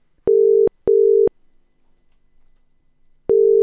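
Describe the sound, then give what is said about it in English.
A telephone ringing tone heard while a call connects: a steady low electronic tone in two short bursts, a pause of about two seconds, then the pair begins again. No one speaks. “I've got his number typed in now. Let's give him a buzz and see how you go.”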